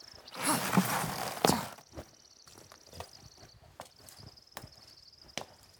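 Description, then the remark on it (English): Horses' hooves clip-clop at a slow, steady walking pace while crickets chirp continuously in the background. A brief burst of rushing, breathy noise comes before the hoofbeats. “We have to stop. The horses won't make it much longer if we continue.”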